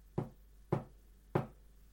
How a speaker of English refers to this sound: The silence outside the car was absolutely still. Until suddenly they heard knocking on the car roof above them.